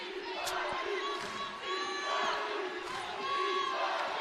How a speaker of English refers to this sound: And the Cardinal fans applaud this third quarter push that has BYU's scoring drought to 6 minutes and change.